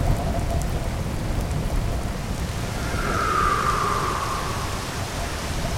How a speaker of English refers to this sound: Sudden rain, high winds. Less than ideal for fishing without rain gear, but better fishing for me. Forecast didn't call at all for rain today.